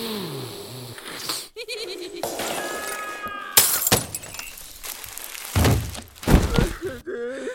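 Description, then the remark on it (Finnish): A facade renovation worker falls through a glass window into a living room: the window smashes loudly, with shattering glass, heavy thuds and tumbling clatter in a chaotic burst of several crashes. Some brief wavering, bleat-like tones surface between impacts; no one speaks. “Hyväksyin jopa sen, kun se maaleja impannut julkisivuremontoija kaatui ikkunan lävitse olohuoneeseeni.”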